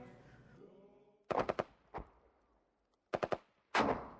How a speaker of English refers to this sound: You'd go to sleep that night, and you'd wake up the next day to the familiar sound of gunshots.